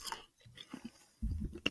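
Crunching and chewing, a series of crisp bites with a denser burst of munching near the end, loud with no talking.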